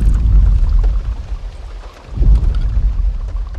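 Deep, booming distant dinosaur footstep thuds, two heavy low rumbles about two seconds apart, rolling under a steady patter of light rain, with no voices or music.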